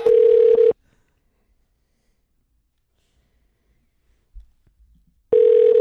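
signal or alarm, telephone dialing and ringing

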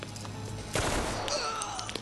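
sound effect, automatic gunfire

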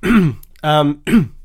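human body sound, coughing and throat clearing

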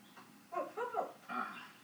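animal, puppy whimpering and barking

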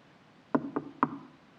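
impact, knocking on a door

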